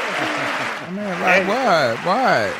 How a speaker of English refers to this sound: All right. Yeah, give him the applause.